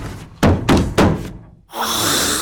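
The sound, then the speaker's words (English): Three heavy, booming bangs strike a door in quick succession, then after a brief pause a steady, bright hiss rises and continues to the end. No one speaks. “He started when something banged the door a few times, then hissed.”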